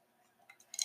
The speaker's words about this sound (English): I'm going to take another sip of my coffee. That'll help.